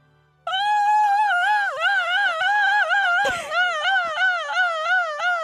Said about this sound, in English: Am I not chopping hard enough? Because you have to kind of like chop your throat. I need you not to chop hard. No, I can hear you chopping. You're chopping your throat so loud.